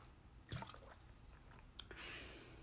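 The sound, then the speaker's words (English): Someone takes a quick sip of water: a soft wet slurp, then a smaller click and a faint hiss of liquid, with no talking. “We're going to take another sip of water.”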